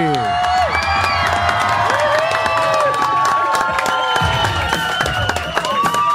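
A studio audience cheers wildly and continuously, with loud whoops, screams and clapping blending into a dense roar that stays strong for about six seconds.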